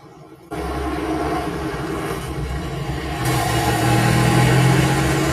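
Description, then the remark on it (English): A Saab car engine kicks in after a brief quiet moment and drives steadily down Melrose with a loud rumble, then revs higher and louder toward the end. No one speaks. “This is a Saab driving down Melrose, but hey, yeah.”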